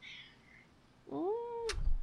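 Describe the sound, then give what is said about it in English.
A single drawn-out meow from Junior, a male pet cat, fairly loud, rising then holding steady before ending abruptly with a soft thump; a faint high mew can be heard just before it. “Wait, I need my emotional support cat for a second.”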